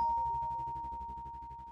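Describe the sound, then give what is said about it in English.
A door chime sounds in an oversea chamber as a steady electronic tone with a rapid pulsing warble underneath, fading gradually over a couple of seconds with nothing else around it. “Exactly 6 months later, a chime sounded in the oversea chamber.”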